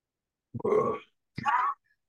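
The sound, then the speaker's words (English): A voice makes a guttural, throat-clearing roar in two rough bursts, a longer low growl and then a shorter, higher rasp, fairly loud with brief silence around them. “Well, actually, as you begin to roar, you hear a guttural throat clearing, but something's different.”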